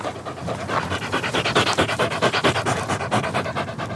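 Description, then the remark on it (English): An exhausted dog pants hard and fast in a steady rapid rhythm of breathy huffs lasting the whole stretch with no talking. “Whoa, man, you are knackered, aren't you?”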